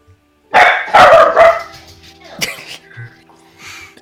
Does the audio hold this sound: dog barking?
yes